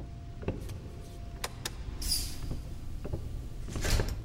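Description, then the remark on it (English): A door is pushed shut, with a series of light clicks and rattles from the handle and latch, ending in a fuller, soft thud as it closes. No one speaks. “I'll shut the door.”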